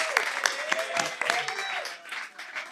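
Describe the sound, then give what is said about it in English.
An audience applauds, with dense, steady clapping that fills the whole few seconds at a fairly even loudness, plus a few faint cheers or whoops rising through it. “let's hear it for”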